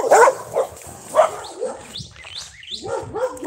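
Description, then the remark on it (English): Dogs owned by a man named Sal bark in short, irregular, loud bursts, with a few high chirping or yelping sounds in a brief lull before the barking resumes. No one speaks. “The owner of those dogs' name is Sal, but I've been calling him Al for 15 years.”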